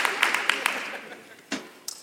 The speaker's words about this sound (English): Would you put your hands together and give God a hand clap of praise for that expensive lesson on last week?